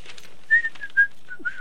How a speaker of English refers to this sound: Stop the whistle. I was just whistling at you. Okay. I was flirting.